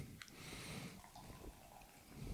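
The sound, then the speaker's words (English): Beer pours into a glass, a soft, steady fizzing hiss with a faint clink at the start as the foam comes up, quiet and without any voices. “Yeah, I'm pouring it. Oh, no. Here comes the foam.”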